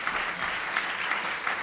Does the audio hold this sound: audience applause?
yes